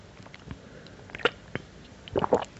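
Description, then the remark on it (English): Quiet sipping and swallowing of water, a few soft wet mouth clicks and gulps spaced irregularly, with a slightly louder cluster of sounds near the end and no talking. “My beverage is water. I'm actually going to take a sip now.”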